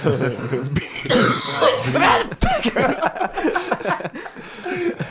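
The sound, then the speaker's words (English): A man coughs in a few harsh bursts right at another person, with voices talking over and around the coughs and a short chuckle-like sound mixed in. “He keeps coughing right at me.”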